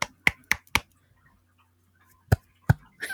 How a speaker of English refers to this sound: We're just clapping now. Just clapping.